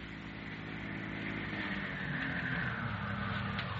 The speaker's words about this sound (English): A tense couple of hours pass, and then they hear an automobile start from the ranch.